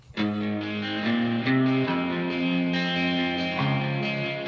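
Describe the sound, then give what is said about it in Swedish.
A low, sustained guitar part played high up on a Greco guitar, with a deep tone that sounds like a downtuned baritone guitar, plays slow chord changes, drenched in echo and effects, alone without any talking. “det låter verkligen som en nedstämd någonting. Ja, en baritongitarr.”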